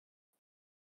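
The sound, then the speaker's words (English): A voice call briefly drops out: a split-second burst of garbled, clipped sound, then nothing, with dead silence before and after. “You cut out. You cut out there.”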